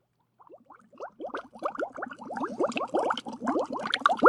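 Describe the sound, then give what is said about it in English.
Water in a two-person hot tub high atop the Butterfield Park Water Tower bubbles and churns steadily, a dense stream of gurgling pops that swells louder over a few seconds, with no voices. “And now, podcasting from a two-person hot tub high atop the Butterfield Park Water Tower, it's the E-Town Lowdown”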